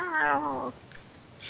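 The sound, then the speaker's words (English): A single drawn-out, whiny meow voiced by a person imitating a cat, loud, fading after about half a second into quiet background noise. “I don't know, a little bit more like a cat voice.”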